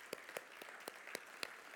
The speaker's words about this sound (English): Would you applaud the salvation of the Lord? Would you do that? Amen.